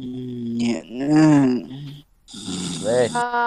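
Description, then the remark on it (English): A person imitates snoring out loud: two drawn-out, droning snore sounds with a short gap between them, fairly loud. “stop snoring! I can hear it through the third floor.”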